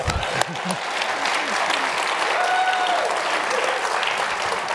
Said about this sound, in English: I want you to give him a round of applause for that.